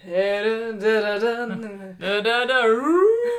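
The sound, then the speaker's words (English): A person vocally imitates a dog's high-pitched whining, chirping and crooning, keening in the back of the throat, in two drawn-out, wavering phrases separated by a brief pause, the second rising in pitch at the end. Fairly loud. “Well, it's not so much, I guess, howling as it is whining and chirping. And keening in the back of the throat.”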